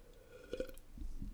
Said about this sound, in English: Another sip break.